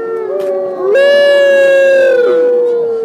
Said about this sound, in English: This is what you hear if you visit Mission Wolf outside West Cliff. That's in southern Colorado. It's home to about 28 wolves and wolf dogs.